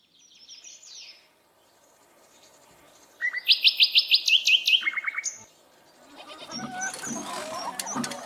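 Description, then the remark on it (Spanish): Birds chirp in an aviary: soft early calls, then a loud, rapid run of high, bright tweets, followed by a busier, rustling chorus of chatter. No one speaks. “Dio una mano de pintura verde a la pajarera bulliciosa”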